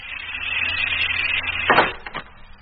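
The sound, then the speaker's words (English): A steady mechanical hiss runs as air is pumped out, then a sudden rushing burst of air and a couple of sharp clunks as the vacuum is broken and a sealed hatch releases, fairly loud, with no talking. “Now to break the vacuum.”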